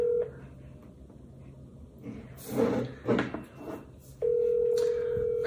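A phone call being placed: a steady electronic tone cuts off, a few seconds of clattering handling noise follow, then a continuous ringing tone begins and holds to the end.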